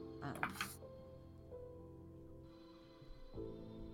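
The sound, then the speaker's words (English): A short, bright burst of rattling as a spray paint can is shaken a few times, fading after half a second into a low, steady tonal hum. “It's very obviously a spray paint can.”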